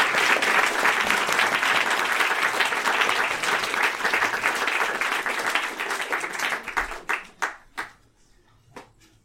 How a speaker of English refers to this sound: But first, a warm round of applause for our special guest, Melinda Liu.